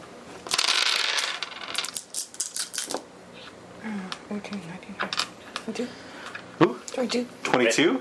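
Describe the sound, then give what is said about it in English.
Five dice rattle and clatter across a hard surface in a burst of sharp clicks, loud, then settle as people start talking. “And go ahead and roll 5 dice for me.”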